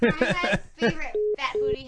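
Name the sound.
phone call dropping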